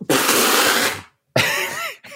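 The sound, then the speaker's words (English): A loud, spraying spit-take of a sip of water, done deliberately as a sound effect: a long hissing burst of about a second, then a shorter sputtering spray with a throaty, voiced edge, and a brief final splutter. “he literally took a sip of water so that he could spit it out for that real sound effect.”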